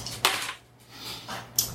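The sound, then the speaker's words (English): Dice rolled in a game clatter onto a hard surface with a sharp click, rattle briefly, then land with a second crisp knock just over a second later, over a low steady hum. “The game roll that hits. Oops, why did those bounce it?”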